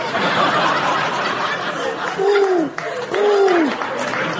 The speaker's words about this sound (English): Pray, sirrah, what be that noise? It's my polyphonic carrier pigeon.